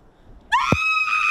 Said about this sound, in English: I'm gonna scream.